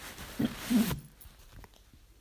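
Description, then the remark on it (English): A small dog named Teasel gives two short, chirpy little squeaks, about a third of a second apart, over a soft hiss that cuts out abruptly; quiet ambience follows, with no talking. “Chirpy little dog.”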